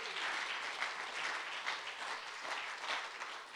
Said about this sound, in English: Can somebody give Jesus a mighty clap in this place? Come on.